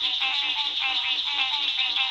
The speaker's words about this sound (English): We leave you this week along the Gulf Coast with a symphony of frogs.